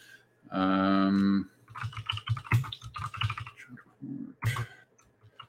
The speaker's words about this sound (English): I'm going to give it away if I talk while I'm typing.